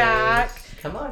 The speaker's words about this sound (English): that wasn't us. No. That was the dog. And he's coming back.